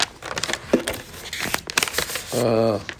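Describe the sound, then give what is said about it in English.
Paper crinkles and rustles as it is handled, a steady run of irregular crackly bursts, before a voice starts speaking near the end; the paper is from the sefer Ma'amar HaChokhmah by Rav Moshe Chaim Luzzatto. “on this paper. This paper over here is from a sefer called Ma'amar HaChokhmah.”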